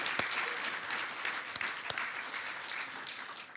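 An audience applauds, dense steady clapping from many hands filling the whole stretch, with a few sharper individual claps standing out above the wash. No one speaks over it.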